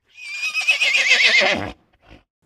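A horse lets out a loud whinny lasting over a second, its wavering pitch sliding downward, followed by a brief snort.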